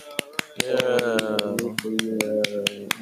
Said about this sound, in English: Cue clap track, yeah.